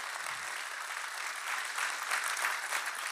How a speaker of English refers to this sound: And a special hello to our family at SCI Chester in partnership with God Behind Bars. Can we show them some love, family? Clap for them.